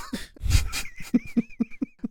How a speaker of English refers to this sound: You see that elf snoring like a dumbass next to you? Yeah. That's my fucking husband.